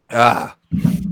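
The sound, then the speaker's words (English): A single loud, forceful sneeze with a strong voiced quality, followed after a short pause by a low, rumbling vocal sound. “Excuse me. Bless you.”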